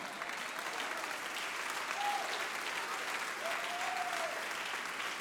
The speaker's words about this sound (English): Now, there is biblical reference to do what you're doing right now. The Bible said in Psalm 47, oh, clap your hands, all ye people.